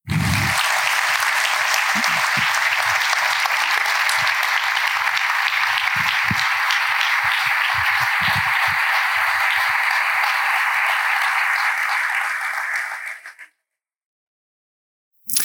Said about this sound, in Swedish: Olof Lundh som är fotbollsjournalist på bland annat TV4 och fotbollskanalen och Simon Bank som är fotbollskrönikör på Sportbladet. Ge dem båda en varm applåd.